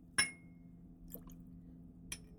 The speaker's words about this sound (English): Add 1/4 ounce of fresh squeezed lime juice, or you can just cut a lime in quarters and use one of the wedges, squeeze it into the glass, and then drop the lime over into the glass.